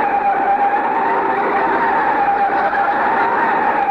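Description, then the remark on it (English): A car with newly fixed brakes brakes hard to stop at a doctor's office building, its tires letting out a loud, steady screech that holds for several seconds without fading, with no one speaking. “See how nice it stopped since we had the brake fixed?”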